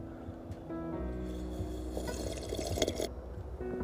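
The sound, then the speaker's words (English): Coffee being poured into a cup on a cold, brisk autumn morning, a steady trickling stream whose pitch rises as the cup fills, with a few drips near the end and no talking. “So coffee cheers.”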